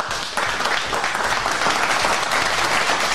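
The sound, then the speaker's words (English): A burst of applause, many hands clapping in a dense, steady roar that starts abruptly and holds at a fairly loud, even level throughout, with no voices. “Hit the clap again, man.”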